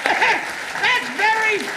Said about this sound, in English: Very well done. Let's give him a round of applause for participating.